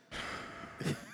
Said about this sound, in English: heavy breathing today. Never good.